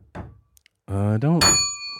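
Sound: bell being rung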